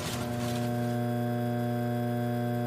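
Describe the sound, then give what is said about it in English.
A steady electrical buzz of an office's fluorescent lights, a constant low hum rich in overtones that holds unchanged throughout, fairly loud, with no voices or other sounds. “Or the buzzing of an office's fluorescent lights.”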